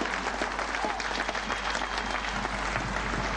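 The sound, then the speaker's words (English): A large crowd applauds a speech in front of the Brandenburg Gate in Berlin, a dense, continuous roar of clapping that stays loud and even throughout with no pauses or voices standing out. “Listen to the crowd go wild.”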